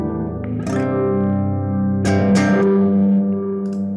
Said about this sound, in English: At its core is a reverb algorithm designed specifically with an ambient player in mind. All right. Adjustable low-pass filter to alter the character of the reverb, ranging from small room to cavernous dark hall.